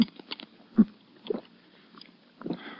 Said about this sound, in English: Here. Here, sip a little water through this glass straw.